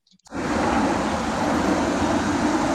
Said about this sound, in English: There's a car coming and I tap her now. Two cars pass. Two cars pass.